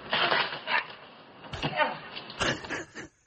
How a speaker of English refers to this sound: That was the audio of him going up to the Trump sign and getting zapped.